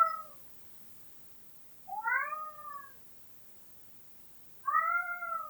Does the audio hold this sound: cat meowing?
yes